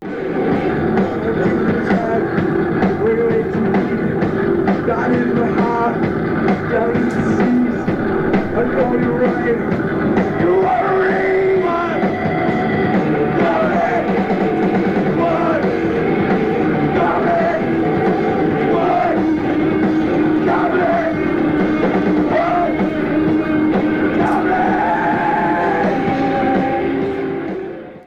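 A loud, dense live band recording from a show in Italy plays throughout. Shouted, yelling vocals of the words 'wood goblins' ride over a thick wall of sound with a rowdy, crowd-like energy, without pause for nearly half a minute.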